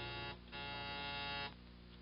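doorbell buzzer ringing

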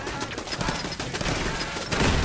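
video game gunfire

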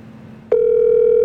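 telephone call ringing unanswered

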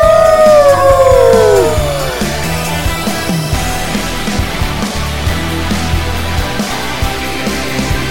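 dog howling

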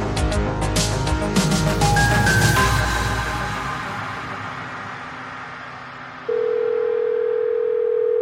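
telephone call ringing out

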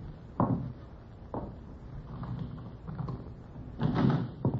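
door being opened

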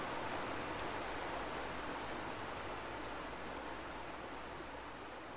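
flowing river water

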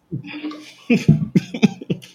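coughing

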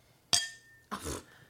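glasses clinking

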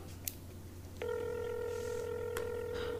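phone number being dialed

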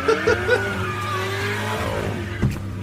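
sports car engine revving

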